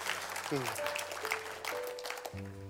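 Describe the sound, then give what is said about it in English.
A church audience applauds steadily, a dense wash of many hands clapping throughout, with sustained low keyboard chords shifting underneath and a few voices mixed into the crowd noise. “You guys can give yourself an applause for that.”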